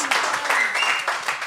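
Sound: audience clapping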